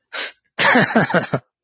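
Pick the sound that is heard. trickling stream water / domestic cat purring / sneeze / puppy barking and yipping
sneeze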